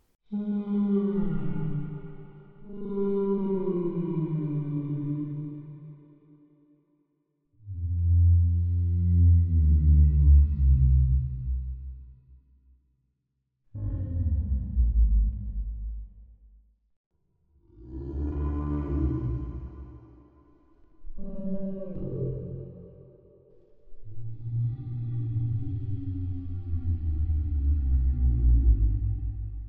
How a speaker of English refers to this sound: A whale? A whale. Yes, you're both right. That is a big whale swimming in the water using echolocation to talk to other whales and find out what's going on and trying to find where their food is.